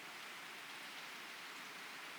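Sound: rain falling outside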